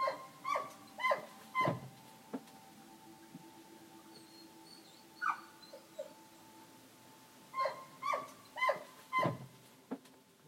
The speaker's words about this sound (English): It's quiet, except for the odd howling from the zone dogs outside in the car park.